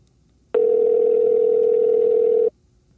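A telephone dial tone for an outgoing phone check-in call placed on September 10th at 4 o'clock sounds once as a steady, loud, low-pitched electronic hum lasting about two seconds, then cuts off abruptly into near silence. No one speaks.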